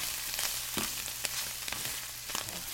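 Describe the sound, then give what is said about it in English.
Morel mushrooms for a chicken stuffing sauteing in a pan on a stovetop: a steady, bright sizzle with scattered sharp pops and crackles, and no voices. “I've got a chicken with a morel stuffing, and I'm going to saute those on top of the stove right now.”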